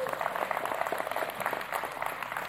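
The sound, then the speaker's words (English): A crowd applauds steadily for a couple of seconds, a dense patter of many hands clapping at once, moderately loud, with no one speaking over it, giving a hand to a young man welcomed back. “Y'all give Gavin a hand clap.”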